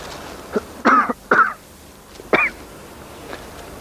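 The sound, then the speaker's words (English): A few short, dry coughs and throat-clearing sounds come in quick, uneven bursts, with a fainter one trailing off near the end. No one speaks. “A slight illness, incurable, a slight cough that will develop into far more.”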